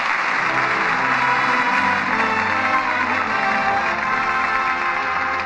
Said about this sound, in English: And that applause says it all.